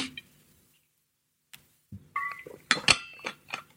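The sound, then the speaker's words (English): Someone takes a swig of water from a glass: a few sharp clinks and short ringing glassy tones, with soft knocks and handling noises between quiet pauses. No one speaks. “Let me take a swig of water or we won't get through it.”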